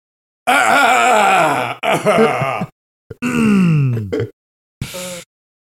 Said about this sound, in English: Welcome to the Weekly Warriors. And now it's a burp.